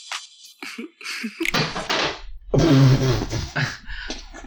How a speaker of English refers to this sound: I just slammed my hand.